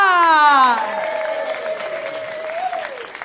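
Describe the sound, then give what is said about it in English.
An audience bursts into steady applause and cheering as a performer from Lancashire is welcomed to the stage, opening with a loud falling whoop, then a long held shout rising briefly near the end over a dense wash of clapping. “She's come all the way from Lancashire, so she deserves extra applause.”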